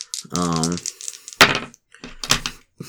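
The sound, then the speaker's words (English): Dice clatter across a tabletop in a few quick bursts of sharp clicks and rattles, following a brief drawn-out vocal sound. “Roll two dice for me and two dice for him, and then we'll see who kind of gets through.”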